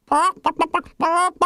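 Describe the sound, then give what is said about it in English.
Chickens squawk and cluck: two drawn-out, strained squawks bracket a quick run of short clucks, all loud and alone with no talking. “Chanticleer's cries had been heard. The hens looked up.”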